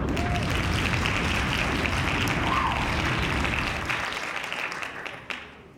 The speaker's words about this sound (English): Bombs! Hand claps on that.